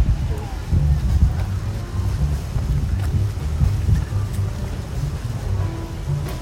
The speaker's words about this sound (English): You could actually hide from the rain.